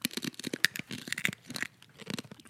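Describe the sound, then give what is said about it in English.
Crisp crunching of about three whole roasted coffee beans, one of them a jumbo bean, being chewed, a rapid irregular run of brittle cracks and grinding bursts that continues steadily for a couple of seconds with no talking. “Okay, crunch. That's a good crunch.”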